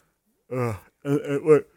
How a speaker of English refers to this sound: I mean, sorry, as I yawn.